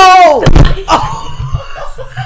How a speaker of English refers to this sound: laughed and pounded the desk, which knocked over the mic.